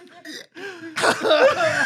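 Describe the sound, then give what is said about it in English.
Strained vocal sounds break into a harsh, explosive cough from a man after eating extremely hot chili, followed by rough sputtering and throat-clearing noises that continue loudly to the end. “I coughed it into my nose.”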